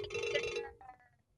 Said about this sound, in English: What the hell is that? Is that your ringtone? What kind of ringtone is that? So unpleasant. Rude awakening.